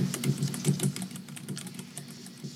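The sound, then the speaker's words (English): Rapid, uneven clicking of keys on a computer keyboard, a steady flurry of taps with no voices. “The keyboard again.”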